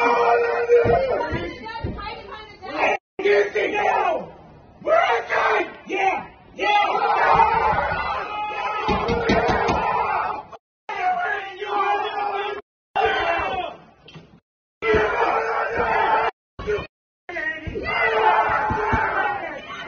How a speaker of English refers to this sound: We have audio of them banging on the hotel windows. In fact, let's play that so you can hear that too.